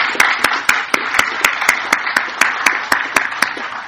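A crowd applauds steadily, a dense wash of clapping with sharper individual claps cutting through at a regular beat, sustained and fairly loud throughout with no talking.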